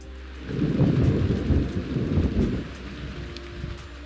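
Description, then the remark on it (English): Steady rain with heavy low-frequency wind buffeting the microphone in the middle of nowhere in Denmark, cold winter weather, during a 500 kilometer ride on a small-wheeled folding bike; a rumbling roar that swells and eases over a few seconds, loud, with no voices. “So here I am in the middle of nowhere in Denmark. It's raining, it's cold, and I'm completely drenched.”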